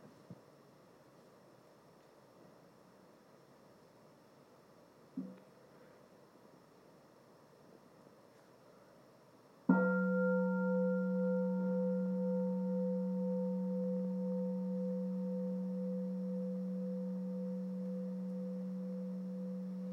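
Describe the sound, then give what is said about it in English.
A bell is struck once and rings out in a long, steady tone with several clear overtones, fading very slowly over about ten seconds. Before the strike there is only quiet background hiss and a faint tap. “Let's end the bell.”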